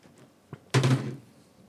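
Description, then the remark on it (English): A faint tap, then one loud, heavy thud of a hard knock on a wooden door, with a short resonant decay and no voices. “You like rap on the door really hard.”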